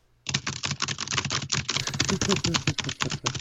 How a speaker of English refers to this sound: I didn't know that you're supposed to type on a keyboard during the show